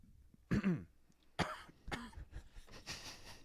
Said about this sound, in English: You just coughed. And you started laughing.